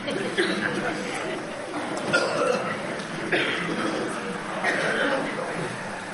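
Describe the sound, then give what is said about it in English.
A group of people clear their throats at once, as instructed before singing again, a scattered overlapping chorus of short rough rasps and coughs over a low murmur, with several bursts standing out across the crowd. “Clear your throat.”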